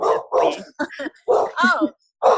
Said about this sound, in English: My dog's barking through my podcasts all the time. It's all good. So we've both got a dog called Peppy, and my Peppy is announcing to me that one of my kids arriving home.